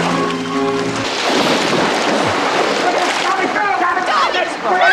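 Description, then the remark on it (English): A brief shout gives way to loud splashing and churning water as people fighting tumble into a pool, with the sloshing continuing busily to the end and voices mixed in. “They always ended up in the water.”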